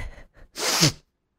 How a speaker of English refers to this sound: That was not me necessarily having to sniffle. That was a reference to Cocaine.